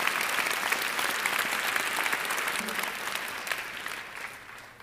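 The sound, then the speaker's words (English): A crowd applauds God in praise with dense, steady hand clapping that stays loud for several seconds, then gradually thins and fades toward the end. “Does God not deserve a hand clap of praise from all of us?”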